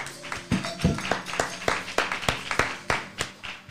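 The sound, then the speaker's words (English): A church audience claps in praise together in a steady, even rhythm, about three claps per second, sharp and fairly loud, with a faint murmur of voices underneath. “Let's give another hand clap of praise, church.”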